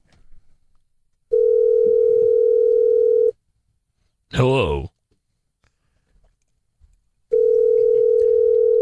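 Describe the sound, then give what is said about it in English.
Two long, steady ringback tones of about two seconds each from a phone call waiting to be answered. Between them is a pause in which a single voice briefly answers. Loud, with faint clicks in between. “Yeah, how do you don't have somebody answer on the first ring, man?”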